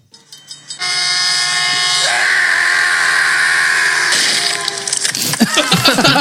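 A loud train horn sound effect called "Train" blares in one long, sustained blast lasting several seconds, then breaks off into rougher, clattering noise at the end.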